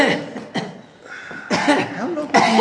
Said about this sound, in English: How long have you had this cough?